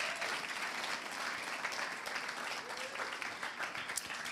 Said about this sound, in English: Why don't we give these guys a round of applause?